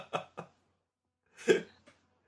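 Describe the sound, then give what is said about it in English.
A few short coughs: two quick light ones, a pause, then a louder, harsher cough followed by a faint little catch. No one speaks. “I hope you have a coughing fit now.”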